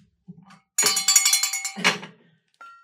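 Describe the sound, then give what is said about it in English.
A bright, metallic bell rings out loudly in a quick, shimmering series of strokes, then one more clang follows, with a brief ringing tone trailing at the end. “Like I need a gong. Gong, gong, gong. I'll do a bell.”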